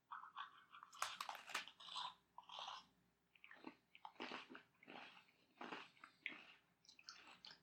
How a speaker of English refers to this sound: As always with anything with crunchers, I am going to just eat the cream first to see if I can get maximum crunch. I'm gonna take a big old normal bite.